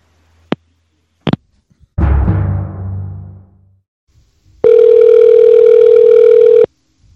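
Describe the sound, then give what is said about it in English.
Two sharp clicks and a clattering thud of a receiver being hung up, then a loud, steady telephone dial tone that drones for about two seconds before cutting off abruptly. No one speaks. “I don't need permission to hang up the phone.”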